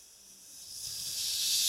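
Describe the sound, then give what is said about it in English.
A voice imitates the sound of oncoming rain heard from about a mile away, a steady, airy hiss, high and breathy, swelling gradually louder over under two seconds with no words spoken. “And my favorite ones have been when I've kind of heard it coming from a distance, and I go out, and then all of a sudden you can hear the rain when it's like a mile away, and you hear it like.”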